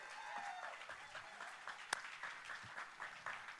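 Steady applause from an audience, a dense wash of many hands clapping at moderate volume for several seconds, with one sharper, louder clap standing out midway.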